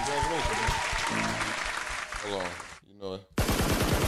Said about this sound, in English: Gotta clear your ears out with them gunshots, though, man. Make sure you listening, man.